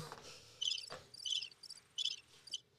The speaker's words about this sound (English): Damn, already crickets? I have that button labeled that.